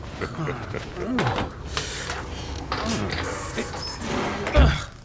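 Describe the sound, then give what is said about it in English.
A sticking inner door with misaligned stops and bent hinges is shoved and scraped against its frame, rattling and creaking before a dull thud near the end, with muffled voices and movement underneath. “Well, first thing I'll do is fix this inner door. You can try all you want. That thing never closed right.”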